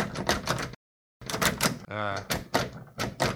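A jammed door in a compound being forced open: fairly loud rattling and clunking in repeated bursts, broken by a short pause, with a squeaky creak in the middle.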